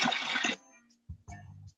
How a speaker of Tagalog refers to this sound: Ayan natin, gripo. Grabe, tulog na ating gripo.